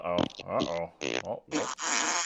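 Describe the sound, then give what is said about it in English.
A fart sound effect: four loud, buzzy bursts in quick succession with wobbling pitch, the last stretching into a long, airy sputter, with no talking. “Fart.”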